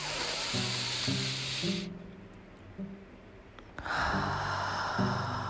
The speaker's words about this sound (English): So the first thing is breathe. Be aware of your breathing. You know, a deep breath definitely helps, but if you just bring the awareness to how you're breathing, that will also make a difference. Breathe.